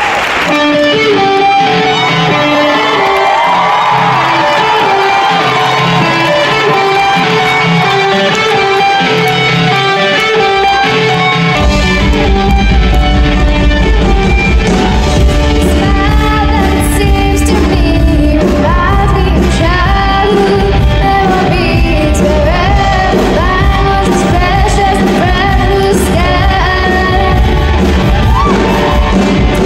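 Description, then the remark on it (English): Parents in the crowd cheer wildly, with shouts, whoops and yells, over a little band of kids, put together by their teacher, playing a rock song. Heavy bass kicks in partway through, and the noise stays loud and continuous. “And listen to their parents in the crowd go crazy.”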